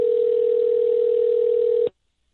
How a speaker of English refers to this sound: So I'm just going to call him on his cell phone. We are going to do cell phone radio.